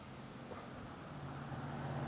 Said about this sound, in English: So, hella traffic today, huh? Oh, you hear all that traffic? Yeah, I hear it.